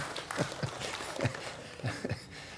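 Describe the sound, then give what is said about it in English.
Light, scattered audience clapping: a handful of sharp, uneven claps spaced out over a few seconds, fairly quiet, with no one talking over them. “So that means I'm getting closer to death, and you're clapping.”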